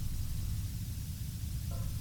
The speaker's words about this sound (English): There's nothing more ominous than static.